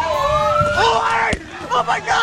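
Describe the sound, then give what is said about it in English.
At a night street protest against the police shooting of Stephon Clark, a noisy crowd shouts over a wailing siren, punctuated by one sharp impact sound as a slow-moving car drives through the crowd and nicks a woman, then agitated crowd clamor continues. “Part of the video that was shot the night that the car drove through the crowd and nicked this woman was recorded and released.”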